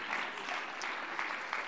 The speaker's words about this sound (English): Oh, clap your hands, all ye people, and give the Lord praise today.